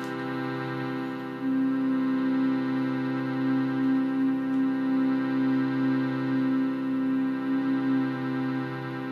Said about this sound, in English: So let's take a nice, slow, deep breath here through the nose to begin. And let it go with a hum.